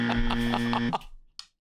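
A loud, harsh buzzer blares for just under a second, a steady low droning tone with a rapid pulsing rasp, then cuts off, followed by a brief sharp click.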